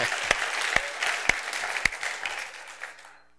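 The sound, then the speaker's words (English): A crowd applauds the worship team with steady, dense clapping that holds for about two and a half seconds, a few sharper claps standing out, then fades away quietly near the end. “Yeah, you can clap. I would clap.”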